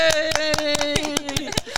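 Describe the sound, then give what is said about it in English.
A group claps together in a steady, quick rhythm at John R. Wooden High School, about ten sharp claps in two seconds, fairly loud, with a sustained voice-like tone held underneath. “Let's clap that in.”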